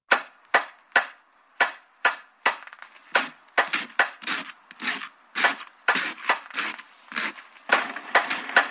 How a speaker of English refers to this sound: Is the sound of something pounding a nail, right? Yeah, the first sound is something pounding a nail, but it isn't a hammer. It's a banana.